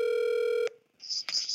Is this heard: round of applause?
no